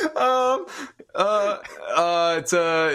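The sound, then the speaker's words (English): A human voice imitates a turkey gobbling: four loud, warbling voiced bursts with a steady mid pitch and quivering tones, separated by brief gaps. “It's a turkey. It's gotta be a turkey. Yes, turkey.”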